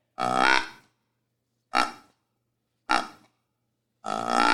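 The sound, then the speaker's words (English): A Whiskey and Whitetail's bourbon barrel deer grunt tube, blown into a paper bag without cupping the bottom, gives four raspy, buzzy grunts about a second apart; the first and last are longer and louder, the middle two short and clipped. “Yeah, that is the Whiskey and Whitetail's bourbon barrel grunt tube.”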